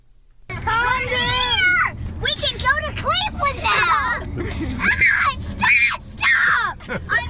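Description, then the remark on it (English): A child screams and shrieks over and over for several seconds in a played video, high-pitched wails rising and falling, loud, with a low background murmur throughout. “That screaming noise.”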